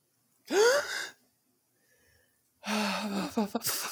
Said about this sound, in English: Pushing up and grinding against her, Ginny gasped. Mm. Do you have a gasp?